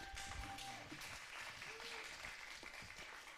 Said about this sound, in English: They're not clapping very enthusiastically, so that's all right.